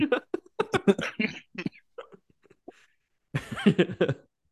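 A series of harsh coughing bursts comes in quick irregular succession, trails off into a few faint catches, then a final loud, drawn-out cough fit follows after a brief pause.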